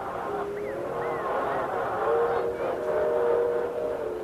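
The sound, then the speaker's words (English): A steady, droning rumble with sustained tonal whines, growing slightly louder toward the end like an approaching train. It continues unbroken with no clear talking. “No, there's a train.”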